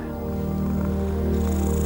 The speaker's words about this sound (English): there she is, a silvery soft cat with the most gorgeous green eyes settles down next to you. Her fur is silky smooth and her warm body wriggles a bit in your lap before she settles into a deep, happy purr.